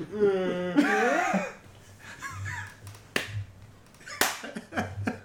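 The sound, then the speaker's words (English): A handful of sharp, irregularly spaced hand claps ring out after a brief voiced, laugh-like sound at the start, each clap a crisp, fairly loud smack over a low background hum. “And that clapping isn't for a cut.”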